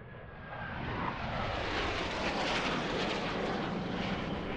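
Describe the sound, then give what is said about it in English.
A loud, continuous roar of Arab coalition fighter planes passing overhead through the sky over Sana'a at 2 a.m., swelling in the first second and then holding as a broad, rushing engine noise with no voices. “on Thursday, the 26th of March, Arab coalition fighter planes suddenly cut through the Sana'a sky and war became a reality.”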